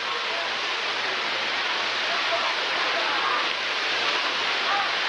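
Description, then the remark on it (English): Rain falls steadily at a ballpark during a baseball game, a dense, even hiss that holds the same loudness throughout, with a faint low hum running beneath it. “And it is raining right now.”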